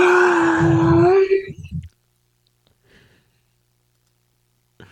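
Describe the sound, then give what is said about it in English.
A man lets out a loud, strained groan with a rough, gurgling edge, as if choking, lasting under two seconds before breaking off into near silence. “You sound like you're choking.”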